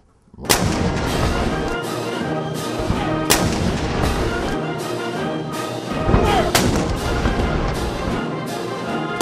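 Loud booming fire from four 105 mm howitzer cannons in a parking lot, several heavy blasts a few seconds apart, each followed by a rolling rumble that fills the gaps with a continuous roar.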